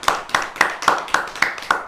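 An audience at a village meeting claps in steady unison, about seven sharp, bright claps spaced evenly at a brisk, regular beat, with no voices over them, welcoming the panchayat's sarpanch.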